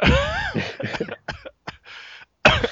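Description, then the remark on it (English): Someone coughs and chokes in a run of harsh, irregular bursts, opening with a strained, wheezy vocal sound and ending on one more loud hack. “Got me coughing and choking on that one.”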